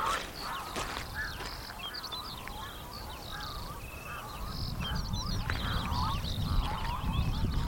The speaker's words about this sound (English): Some strange calls. Birds that I'm not familiar with.